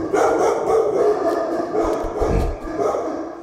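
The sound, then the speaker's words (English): A dog barks and yips repeatedly in a quick, uneven series, loud, with some background murmur underneath. “I don't know how much of the dog's barking the microphones pick up, but hopefully a lot of it.”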